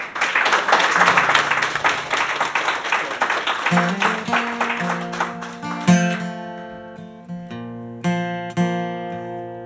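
An audience gives a final round of applause for the guests, clapping steadily for a few seconds, the clapping gradually thinning as instrumental music with clear sustained notes begins and takes over.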